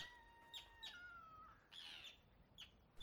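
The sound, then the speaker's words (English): Several sharp seagull calls ring out in quick succession above a busy pier at a port, bright squawks and chirps over a steady outdoor murmur, repeated irregularly across the moment with no talking. “They watch the boats and enjoy their chippies, safeguarding each bite from the vicious seagulls above.”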